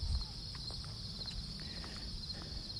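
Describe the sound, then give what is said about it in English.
Steady footsteps of someone walking up a big hill, a regular soft thudding rhythm, with a continuous high-pitched buzz of crickets or insects running underneath throughout. “So I'm walking up the big hill again, and ready for my last run before the Bird in Hand Half Marathon this Saturday.”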